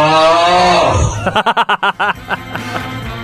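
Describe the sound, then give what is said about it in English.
A man's loud, rasping snore, recorded as a WhatsApp voice note in the Midlands, with a drawn-out, almost moo-like groan, breaking into a quick burst of six or seven fluttering pulses before trailing off into rougher, uneven breaths. “Getting a good few WhatsApp voice notes with snorers all across the Midlands.”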